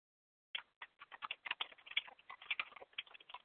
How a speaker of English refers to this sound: I'm the one that's typing, yes.